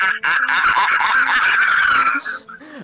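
A loud, sustained screech of car tires skidding dominates for about two seconds, mixed with engine roar, then cuts off as a short engine whine trails away.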